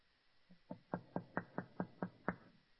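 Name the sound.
knocking on a door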